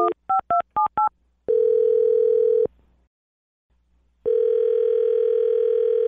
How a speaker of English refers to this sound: All right, I'm going to dial this phone number right now. Here we go.